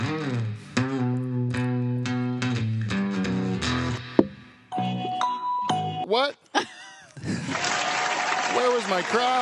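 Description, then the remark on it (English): A string of electronic chimes and tones plays, followed by a pause and then a sudden burst of live audience applause at the show Live from the Dutch Hall that continues steadily to the end, under a lingering tone. “It's like the crowd was thinking about it for a bit, eh? And then they just thought, they eventually decided to clap, eh?”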